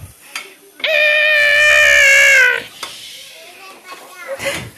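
A baby cries out in one long, loud, high-pitched wail lasting nearly two seconds, followed by a few softer, shorter whimpers and fussing sounds.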